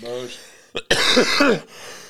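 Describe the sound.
A harsh, raspy coughing fit after taking a dab: a short hack, then a longer strained burst of wheezy coughs, following a brief stretch of voice at the start.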